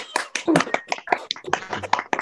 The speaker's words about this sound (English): But now, because although you may have applauded me, it is my turn to applaud you.